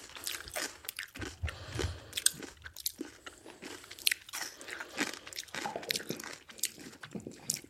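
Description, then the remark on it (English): Crunchy chewing of fermented radish kraut, with repeated sharp bites and wet crunches in an irregular rhythm, fairly loud, with no talking. “That's crunchy.”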